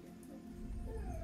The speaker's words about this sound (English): Why are you crying? I'm so sorry, guys, but it's like puppy drama.